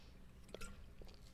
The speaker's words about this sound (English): And so I want you to grab a cup of water with me. We're going to chug in 3, 2, let's hydrate.